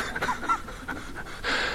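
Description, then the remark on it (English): A voice imitates a panting dog with quick, breathy huffs in an uneven rhythm, some with faint voiced squeaks, ending in a longer, louder exhale. “I'm a dog.”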